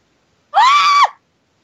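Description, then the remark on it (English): A single loud, high-pitched scream lasting about half a second, held steady before its pitch drops sharply at the end, with silence on either side. “Usually that scream is a good indicator.”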